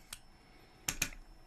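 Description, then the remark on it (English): A few sharp keystrokes on a computer keyboard, moderately loud, come as one isolated tap followed by a quick pair, over a quiet background hum with no talking. “See if I can move it with my keyboard. Nope, can't move it with my keyboard.”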